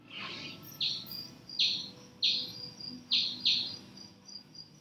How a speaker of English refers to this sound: The water bat chirps aren't exactly subtle. At 110 decibels, makes more racket than a rotary drum. But like us, most of the insects it can't hear ultrasound.